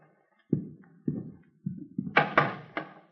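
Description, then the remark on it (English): A door leading to a bedroom is handled and opened: a series of low wooden thuds and knocks, then three sharper, louder clattering bangs toward the end, with no voices. “Where's that door go, ma'am?”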